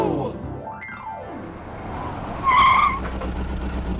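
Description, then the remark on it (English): A small electric toy car whirs past with a rising then falling engine pitch, followed by a short, sharp tire skid squeal over a steady rumble. No one speaks. “We took my detective car to Amara's house.”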